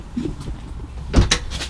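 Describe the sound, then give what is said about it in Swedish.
An entrance door opens and shuts with a solid thud and a brief rattle of the latch, against a low background rumble with no voices. “Två dörrar. En grova entré. En fin. Ta den här.”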